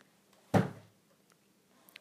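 A princess slams the door of her room shut once at her father, a loud, heavy bang that rings out briefly and fades, surrounded by near silence with only faint room noise afterward.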